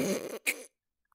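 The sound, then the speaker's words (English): A person imitates snoring with a rough, rattling snort that gives way to a brief breathy gasp, then silence. “That's how I snore.”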